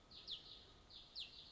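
Two bright, high-pitched bird calls, each a sustained whistle with a sharp descending chirp, repeat about a second apart over quiet background hiss; fairly faint.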